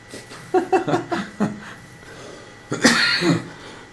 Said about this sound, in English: Thanks for coughing on the podcast. Coughing up. That's unprofessional.